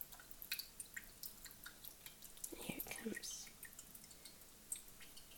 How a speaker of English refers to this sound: Pouring into my jigger.